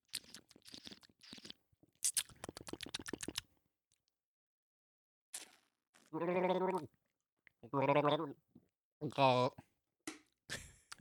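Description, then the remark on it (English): Three drawn-out, warbling throat gargles during a beer tasting, fairly loud, each lasting about a second. They follow a stretch of quick crackly, crunchy clicks with short pauses between them. “that last bit of a gargle, actually, there was no beer in my back of my throat like I thought there was.”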